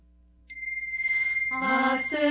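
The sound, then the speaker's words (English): A resonant chime is struck once on a C note and rings with a steady, sustained tone. Rich overtones swell in partway through, and the bright ringing carries on clearly with no voices. “To represent C, the speed of light, squared, we chime on a resonating C note.”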